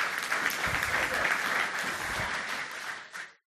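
A crowd claps steadily for about three seconds, a dense, sustained patter of many hands that holds at even strength before tapering off quickly into silence.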